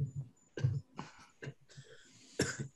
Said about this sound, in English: Now I'm coughing.